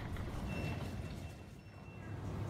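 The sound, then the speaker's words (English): Short electronic beeps from ticket gates at Vauxhall Underground station in the UK at 7 a.m. ring out repeatedly, each one a passenger going through the gates, over the loud, rumbling hubbub of the busy station, with faint crowd murmur and footsteps throughout. “Every beep is another passenger going through the gates.”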